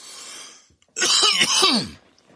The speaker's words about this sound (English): You can go easy, but eventually you're going to hit it right, and then you're going to cough. Be careful and start slow.